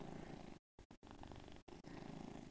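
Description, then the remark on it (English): A cat named Gramps purring steadily in a lap, a low rumbling drone broken by a few brief gaps, with no talking over it. “I bet you guys can hear Gramps purring in my lap.”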